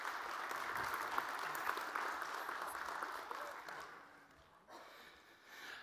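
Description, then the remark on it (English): A church audience claps after a baptism in a steady, dense burst of applause that holds for several seconds, then thins and fades toward the end, with a brief swell just before it closes. “There's one, so go ahead and applause.”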